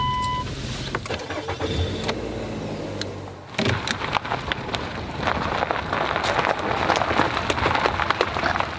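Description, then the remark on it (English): A car engine hums low and steady, then gives way to a loud, continuous wash of road and rain noise as the speaker's grandmother's car drives along a wet road, with no talking. “We can also drive that car if we need to.”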